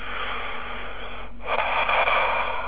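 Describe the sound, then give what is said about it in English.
Deep breathing in through the mouth during a guided breathing exercise: a long airy rush of breath, a brief pause, then a stronger, louder draw of air. No one speaks. “And continue breathing like this, because as you are breathing like this, you're actually beginning to create a coherency between your heart and your brain.”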